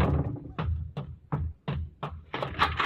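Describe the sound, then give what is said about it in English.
A door bangs shut over and over, a quick series of heavy, booming thuds at a steady pace, loud, ending in a rougher burst of rattling noise. “Slamming doors, women yelling.”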